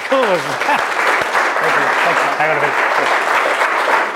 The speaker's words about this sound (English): Round of applause.